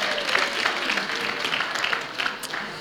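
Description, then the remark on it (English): An audience applauds the boys and girls who came up to help sing, a dense wash of many hands clapping at an even, fairly loud level throughout, with no voices standing out. “Let's give them a clap.”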